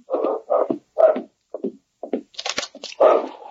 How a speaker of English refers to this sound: I do. Sounds like that dog is right outside the door.